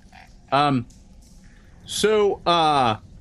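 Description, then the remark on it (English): A person imitates the croaking of hunting toads with their voice: three short, moderately loud croaks, one early and then a quick pair, separated by quiet pauses. “So you kind of draw close, and the croaking is starting to get louder, and it's at that point that Varnask is like, ah, they've brought out hunting toads.”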